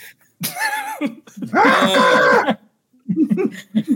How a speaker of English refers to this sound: But just the way that he said, like, oh, there's a kid in here. No, no, it was a baby goat.